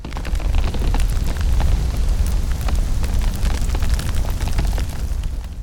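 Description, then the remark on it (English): A continuous, heavy explosive roar with deep rumbling low end and scattered crackles and pops throughout, staying loud and steady for several seconds with no voices. An explosion in a basement that starts a fire. “Mercy leaps just in time to prevent the trigger from igniting the full explosion, but it still starts a fire”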